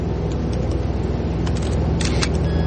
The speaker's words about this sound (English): The computer times the camera to take a continuous strip of photos of the ground beneath the flight path.